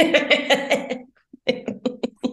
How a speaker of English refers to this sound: So sorry about this cough. I am so sorry. I cannot imagine having AirPods in right now and hearing that.